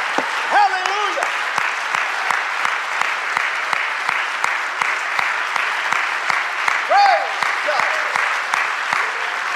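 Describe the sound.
An audience claps their hands for Jesus in a steady, sustained round of applause, dense and continuous, with a few brief voices calling out over the clapping.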